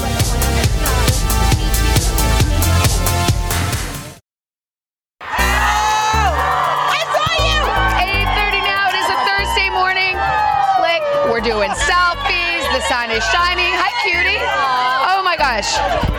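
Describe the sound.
A large outdoor crowd cheers, whoops and shouts loudly as the stars of The Marvelous Mrs. Maisel greet them, excited voices overlapping; it breaks off for about a second of silence, then surges back into sustained, energetic cheering and yelling.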